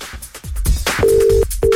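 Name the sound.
telephone call ringing tone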